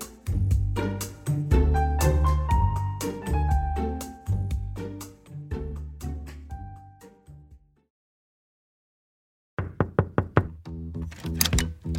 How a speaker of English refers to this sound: Right now, people around Britain are answering a knock at the door and being asked some intimate questions.